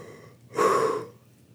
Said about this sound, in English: Okay, so you guys are going to hear me do a big breath. For me, when I'm clearing energy, breath is the gentlest way to do it. So I do these big yawns. Hold on.